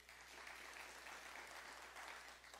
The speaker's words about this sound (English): There's another verse in John, John 3:16. I want you to clap if you know that verse by heart. For God so loved. How many of you had to memorize that at some point in your faith journey? Clap.